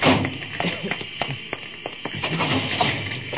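Cabinets are opened and rummaged through, with a run of irregular wooden knocks, taps and dull thuds over a steady background hiss, and no one speaking.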